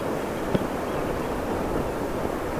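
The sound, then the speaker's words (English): A steady, rushing wash of ocean surf fills the whole stretch, constant, with one brief sharp knock early on and no voices. “I'm quite happy just sitting here listening to the sound of the ocean.”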